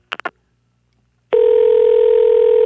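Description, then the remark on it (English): A quick series of three short phone beeps, then a brief pause before a loud, steady telephone dial tone hums on continuously to the end, with no voices, as someone phones a multiplex cinema in Syracuse to reach the manager. “All right, so we're going to call the Syracuse Multiplex right now and see if we can get the manager on the phone.”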